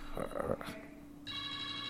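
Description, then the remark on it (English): A telephone starts ringing with a steady, bright electronic tone about halfway through, following a brief burst of muffled voice-like sound; the ring is clear. “It's the phone ringing.”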